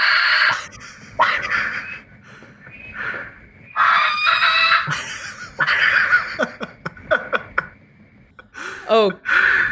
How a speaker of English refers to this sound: So now I'm going to play the barn owl sound.